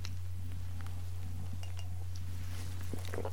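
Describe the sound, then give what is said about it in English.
A few light clinks of a cup against a saucer or table as someone sips coffee, faint and scattered over a steady low electrical hum, with no one talking. “Now I will pause and have a sip of coffee.”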